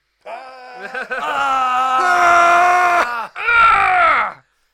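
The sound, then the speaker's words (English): A man lets out a long, loud, strained power-up scream in the style of an anime fighter, holding and intensifying it for about three seconds, then a second shorter burst after a brief gasp. “An hour of screaming each.”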